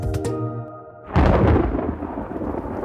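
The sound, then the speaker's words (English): A loud crack of thunder bursts in and rolls into a long, heavy rumble over steady rain on a rainy day in the Imagine Neighborhood, following a brief tonal sting at the start. No one speaks. “It's a rainy day here in the neighborhood”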